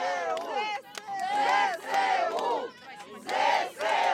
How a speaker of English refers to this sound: But for the people who stayed, and particularly the people who came out yesterday to the center of town, there's jubilation that Kherson is now back under Ukrainian control.